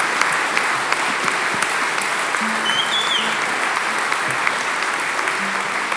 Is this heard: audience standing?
yes